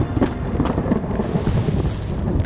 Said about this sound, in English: As lightning crashed overhead